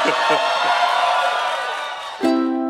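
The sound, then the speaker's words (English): A large live audience cheers and whoops loudly, a dense wash of voices and applause that fades slightly before a sharp tonal sting cuts in near the end. “this crowd is so hot tonight, I don't think we have to do a show. They can just cheer for 2 straight hours.”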